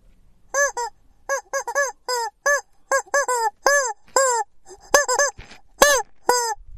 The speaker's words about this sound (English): Thought you'd like a change from the bell. That's chicken, of course.